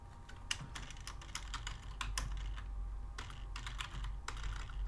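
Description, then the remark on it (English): Typing on a computer keyboard, with quick, irregular keystrokes clattering in bursts and brief pauses over a low steady background hum. No one speaks. “I meant to have all this up beforehand, so you don't have to hear me typing too much, but.”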